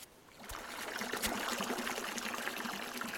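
Fresh water trickles and splashes steadily into a wash bin, a continuous wet patter with a couple of sharper drips or knocks early on, and no voices.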